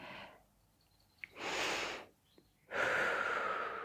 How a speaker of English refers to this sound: So from there, inhale through your nose, out through your mouth. And notice, is your chest raising or is your abdominals?